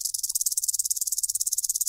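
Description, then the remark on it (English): A detached rattlesnake rattle, one of two kept in a box, is shaken in a fast, steady buzz of rapid dry clicks, loud, lasting a couple of seconds with no voices. “This box has two rattlesnake rattles in it. Let's see how they sound.”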